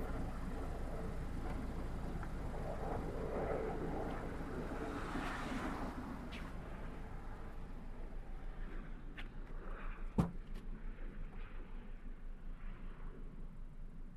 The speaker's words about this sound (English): He pops the hood. Walks in the gravel to hoist it up and inspects the engine.